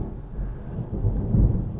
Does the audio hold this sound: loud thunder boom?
yes